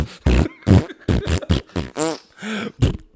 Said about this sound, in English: And now we're God, farting.